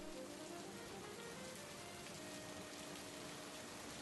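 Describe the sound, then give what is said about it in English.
Steady rain falls continuously, a dense, even hiss of drops with no pauses or voices, fairly soft throughout. “When they called me, it was raining.”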